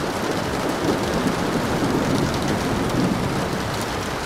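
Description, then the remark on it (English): Steady, dense rain patters and trickles without pause, with a low, soft rumble of thunder rolling somewhere far off beneath it. No voices. “The rain trickling, the thunder in the distance.”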